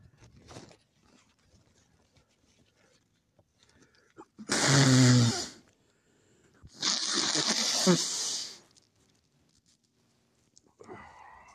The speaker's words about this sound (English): Blowing my nose.